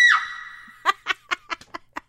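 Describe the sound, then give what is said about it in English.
A baby's high-pitched scream rings out and trails off, followed by a quick run of about seven short, rhythmic bursts like gasping giggles or sobs. Clear, with no talking. “That was a baby, by the way.”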